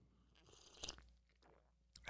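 Quiet sipping of coffee: a soft slurp, a short pause, then another brief sip with a small swallow-like click. No one speaks.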